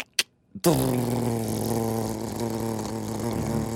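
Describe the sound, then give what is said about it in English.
A voice imitates a garage door opening in the morning after the button is hit: two short clicks, then a sustained low, buzzing mechanical drone with steady harmonics that hums on continuously at a fairly loud, even level. “So you hit the button, the sound of the garage door opening in the morning.”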